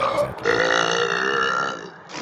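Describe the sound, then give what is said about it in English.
A long, loud, drawn-out burp rumbles for about two seconds, followed right at the end by a short, raspy fart-like blast, after each person had drunk a 12-pack of beer. “All right, here's a burp burp fart.”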